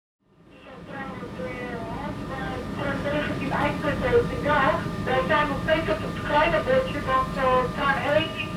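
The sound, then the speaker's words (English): Steady low rumble inside a moving train carriage of a smoking train, rising from quiet and holding a constant roar, with muffled voices chattering over the rattle throughout. “This is a smoking train.”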